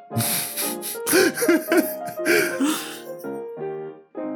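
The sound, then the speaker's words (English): A voice imitates a dog's yawn: a drawn-out, breathy, whining vocalization that swoops up and down in pitch several times before trailing off into softer, steady tones. “That's another dog yawn.”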